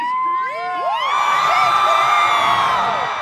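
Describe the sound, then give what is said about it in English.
A crowd of fans cheers loudly and steadily outside a courthouse, celebrating a judge ending a conservatorship in November 2021, with high whoops and shrieks rising and sliding over a dense roar of many voices that holds throughout. “That was until November this year, when a judge ended the conservatorship with immediate effect, as a crowd of fans celebrated outside the courthouse.”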